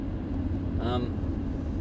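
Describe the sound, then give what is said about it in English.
A steady, low road-and-engine rumble fills the cabin of a car driving in heavy traffic, with a brief tonal, voice-like sound rising near the middle before the drone carries on. “I'm in a crowd of traffic here.”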